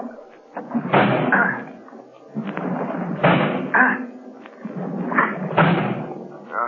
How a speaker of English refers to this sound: There might be a chance. A faint chance. But it's only a chance. I'm going to try to break down the door.